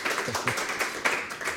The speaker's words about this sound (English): You got one or two of our smaller questions right. Big round of applause. Well done.